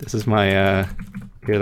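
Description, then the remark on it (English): A short burst of clicky typing on a new MacBook Pro keyboard, several quick sharp keystrokes, in a brief pause between a person's speech, moderately loud. “That's the sound of a satisfying click right there.”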